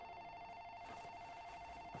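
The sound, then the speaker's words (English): A desk telephone rings with a steady, continuous electronic tone that holds for the full two seconds, fairly quiet and with no one speaking. “The phone on my desk rang and I slid off the gurney.”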